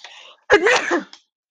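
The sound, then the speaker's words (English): A single loud sneeze: a soft breathy intake, a brief pause, then a sharp explosive burst that trails off in under a second, with a small catch of breath at the end. “Oh, wow, I'm about to sneeze.”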